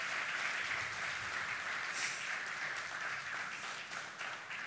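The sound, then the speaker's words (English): An audience claps together after a prayer, giving the Lord a hand clap of praise. It is a dense, sustained wash of applause, many overlapping hand claps at a steady, loud level with no distinct rhythm, fading slightly toward the end. “Just give the Lord just a hand clap of praise for that.”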